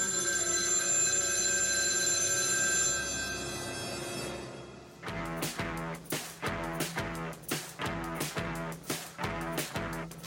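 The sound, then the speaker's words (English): A telephone rings after a number is dialed on a call to the Acme Packing Company line: a steady, humming tone holds for about five seconds, then gives way to a rapid, repeating ring in loud regular bursts. No one speaks. “The number you dialed is Acme Packing Company.”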